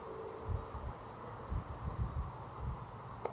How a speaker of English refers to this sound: As I sit here, I can hear the freeway in the distance. There's a buzzing about it. There's a noise about it, just like a mosquito buzzing in the ear, that these trees and this earth and these birds get to hear that all day, all the time.